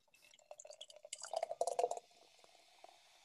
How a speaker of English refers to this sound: You'll be pleased to know, everyone, that is not a sound effect we put in. That's the actual sound of us pouring the beers.